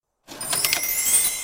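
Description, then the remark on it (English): A cash register sound effect: a few quick metallic clicks followed by a bright, high, shimmering ring and jingle that holds steady for about a second, with no voices. “What is this Sonic cash register?”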